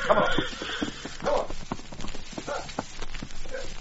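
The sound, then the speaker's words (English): Horses' hooves clip-clop in an uneven walking rhythm, a steady run of sharp knocks as the animals are led back out of range before a fuse is lit for a blast, with some faint background voices. “Now get the horses back while I light the fuse.”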